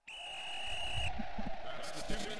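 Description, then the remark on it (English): A two-minute drill warning sound effect: a steady, high-pitched electronic tone holds for about a second and cuts off abruptly, leaving a low, muffled rumble and some faint clatter underneath. “you probably know that sound. That's our two-minute drill.”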